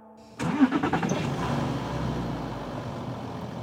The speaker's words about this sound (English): The motorhome's engines roared.